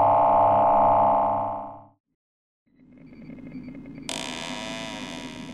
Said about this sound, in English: But for now, home awaits. Bess, if you wouldn't mind activating the door control.